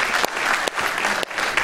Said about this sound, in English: Could you give them a round of applause?